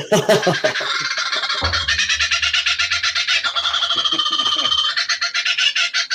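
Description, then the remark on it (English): A loud, raucous call of a kookaburra, a bird native to Australia, fills the whole stretch: rapid, cackling laugh-like bursts that repeat in a fast, rolling rhythm, continuous, with no talking over it. “that's a kookaburra, if anyone was interested. It's from Australia. Native bird.”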